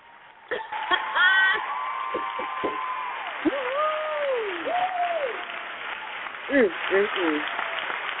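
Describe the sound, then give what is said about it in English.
A small crowd gives the Indie 100 Artist of the Week a round of applause, clapping steadily for several seconds, with whoops and cheering voices rising and falling over the dense, continuous applause. “We got some applause, ladies and gentlemen.”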